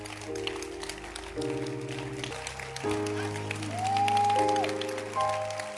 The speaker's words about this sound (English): I'm watching everybody who's clapping or not clapping. Yes. You can now stop clapping.